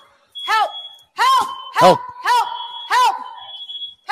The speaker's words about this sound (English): Oh, bitch, now you got a grease fire. Oh, you got more. Fuck. I don't know what to do, guys. Now there's two alarms.